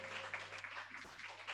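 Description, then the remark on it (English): An audience claps for the cooks who made the day's lunch, a dense, steady patter of many hands that holds evenly throughout the short stretch without a clear peak or fade, with a low steady hum underneath and no talking. “I want us to clap for our cooks today.”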